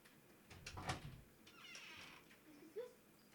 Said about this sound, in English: And your cat's trying to get the fuck on in here. Oh, my cat? Your cat, yeah. Keeps on fucking meowing and, like, putting his paw underneath the door.